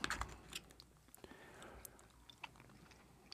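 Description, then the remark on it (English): Wet, squelchy chewing of green beans eaten with chicken, a run of soft mouth clicks and moist smacks in an irregular rhythm, fairly quiet, with a few sharper crunchy snaps and no talking. “If my chicken sounds slimy, it's the green beans.”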